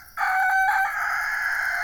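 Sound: rooster crowing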